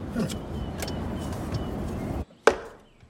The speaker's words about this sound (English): Without saying anything, Ethan Hawke instinctively begins to pull the car over.